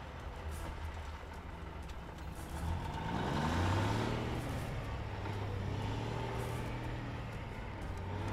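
A car engine rumbles and revs up as the vehicle pulls forward to drive about half a block, the motor's pitch climbing and then settling into a steady drive with road noise; no one speaks.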